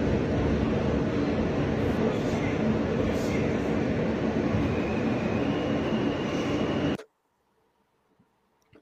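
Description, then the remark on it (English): Subway train sounds played from a video of a subway alarm clock: a loud, steady train roar with rattling wheels and a faint whining tone, running for about seven seconds before cutting off abruptly into near silence. “So we're going to show this video of the Subway alarm clock.”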